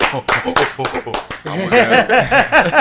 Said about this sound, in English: One year anniversary as well. Clap it up. 1 year anniversary.